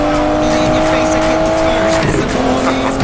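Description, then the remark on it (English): A DB11 sports car roars past, its tires letting out a long, sustained squeal over the loud engine and road noise, with the pitch shifting near the end. “It's not every day I get to take Griff DB11 for spin.”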